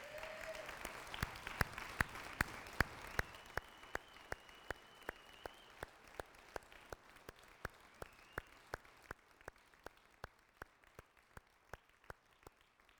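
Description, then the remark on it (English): A large church audience applauds its veterans, who have been asked to stand. The clapping starts full and dense, then gradually thins into fewer, steadier individual claps over about thirteen seconds, with no talking. “I'd like to ask all the veterans to stand. And let's applaud them.”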